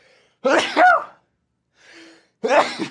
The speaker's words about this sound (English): I gotta sneeze.